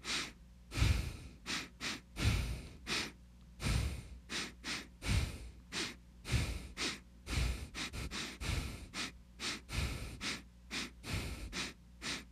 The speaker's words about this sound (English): So in the session, we tried doing a beat, but we only breathed in and out through our noses. Kind of called it sniff beats. For example, I was breathing in, out, in, in, out, in, out, in, out.